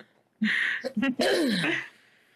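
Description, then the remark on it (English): A raspy throat clearing with a stifled, half-swallowed cough, several breathy, scratchy bursts running together for about a second and a half, with no talking around it. “I feel like I need to sneeze, but it keeps going away. Like I need to cough and it won't surface.”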